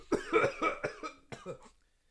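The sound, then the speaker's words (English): A rapid fit of harsh, hacking coughs from one person, six or seven bursts in quick succession, fading out into silence, at a house in Utah. “Try not to cough so loud, Chief.”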